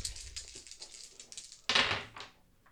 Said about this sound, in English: Roll 4 fate dice.